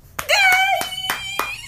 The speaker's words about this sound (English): Wait, let's give the person a round of applause. Yeah. Stand ovation. We're standing, actually.